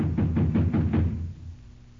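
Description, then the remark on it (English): About five quick, evenly spaced knocks on a door, muffled and fairly loud, followed by a short lingering silence. “With what's taking them so long to answer the door?”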